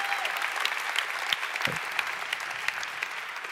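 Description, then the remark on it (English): Sustained applause from an audience fills the space, a dense wash of many hands clapping at steady volume with scattered sharper claps standing out, no voices rising above it. “Come on, let's give them a round of applause and appreciation.”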